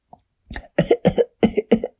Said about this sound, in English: The two little Aquanauts started coughing because all the dust was right there on the floor where they were, and it was all getting swept around.